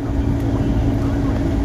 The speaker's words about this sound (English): Always consistently rides on the loudest motorbike to have ever existed on God's green earth. And he always gets up early because his job usually probably most likely has to do with some sort of early bird thing, but he wakes everyone up.